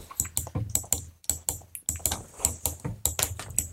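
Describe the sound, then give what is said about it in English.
Rapid, uneven clicks and taps on a laptop keyboard and trackpad during a test run, fairly quiet, continuing steadily for a few seconds with no voices. “I'm just going to click over here to do a test run.”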